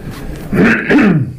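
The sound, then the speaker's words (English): A short, raspy throat clearing in two quick guttural bursts, fairly loud, with no talking around it. “Isn't there supposed to be an off button whenever I clear my throat?”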